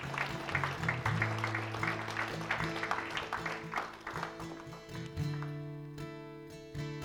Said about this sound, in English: Come on, give them a round of applause as they come this morning.